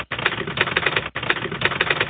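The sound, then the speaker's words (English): Rapid typewriter typing clatters loud in two fast bursts of dense key strikes, split by a brief pause, with no voices. “Only one more person to introduce, and that is the Typing Monkey.”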